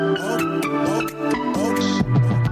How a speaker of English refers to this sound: All right, so here is one of their music videos. This is one of their more popular ones with 600,000 views.